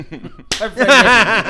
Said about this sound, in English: Do you want to do your clap? Should I clap? I want to clap. Could you clap? Yeah, of course.